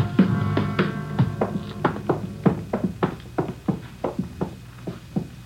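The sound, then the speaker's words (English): Footsteps climb a dark, narrow wooden stairway to the second floor of a cheap rooming house at 134 Jesse Street, a steady run of hollow thuds and knocks at a brisk, slightly uneven pace, with no voices. “We went up a dark, narrow stairway to the second floor.”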